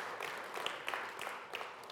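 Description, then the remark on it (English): Scattered audience clapping, a soft, steady wash of hand claps with a few sharper individual claps standing out, lasting the full two seconds with no one talking. “You can clap for it. That's fine. You can clap about that.”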